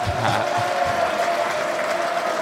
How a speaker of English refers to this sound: Give him a nice little clap.